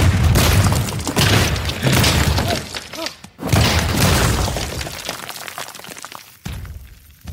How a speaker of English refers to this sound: And I think it's because it was just so unexpected. Just right out of nowhere, he just grabs him and smashes him. Classic Hulk smash.